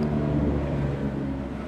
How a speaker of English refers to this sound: As a helicopter passes.